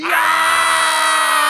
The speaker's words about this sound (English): Let's do an energy scream on three. One, two, three.